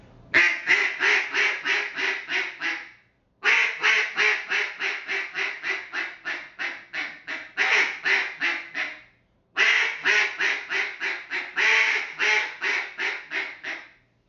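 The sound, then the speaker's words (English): Three loud sequences of rapid quacking from a Nose Dive double reed duck call, each a steady descending hen cadence of a dozen or so notes starting high, separated by brief pauses. “Simple hen cadence on there.”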